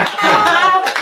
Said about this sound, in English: You got applause for that one.